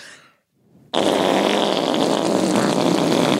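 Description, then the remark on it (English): A voice imitates a fart with one loud, sustained, buzzy raspberry that kicks in abruptly after a short quiet gap and holds steady and strong to the end, with no talking. “Do you want to hear me make the best fart sound you ever heard?”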